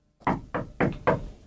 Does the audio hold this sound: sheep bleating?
no